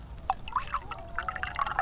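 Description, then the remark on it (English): Wine glugs and trickles into a glass, a steady pour broken into bright, bubbly splashes and drips that last a couple of seconds, with no voices. “You call that a wine pour? A little more, if you please.”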